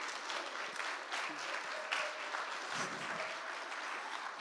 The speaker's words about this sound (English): All right, much better. Round of applause for our trainee here.